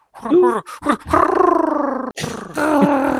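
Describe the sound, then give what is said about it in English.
A person vocally imitates a great horned owl call: a few short, wavering voiced hoots, followed by two long, loud, steady hooting tones with a brief break between them. “You mean if you go out there and listen, you'll hear it at night going.”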